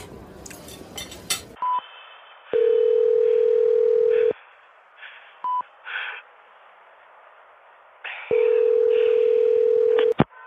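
phone number being dialed

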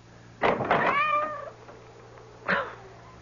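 cat meowing

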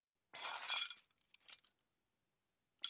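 keys jangling

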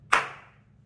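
single hand clap

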